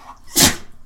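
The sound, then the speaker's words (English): A single sharp sneeze bursts out loud, a quick breathy explosion lasting under a quarter second, with only faint room noise before and after and no talking. “bless you.”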